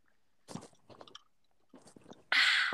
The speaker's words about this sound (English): Okay. Hold on, no, let me get a let me get a sip of my Sprite.